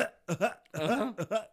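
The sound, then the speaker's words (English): A person coughs after hitting a joint, recorded on rolling tape during a recording session: a short, ragged fit of about five harsh, throaty coughs in quick succession, loud, with no talking around them. “Okay, hits this fucking doobie and starts coughing.”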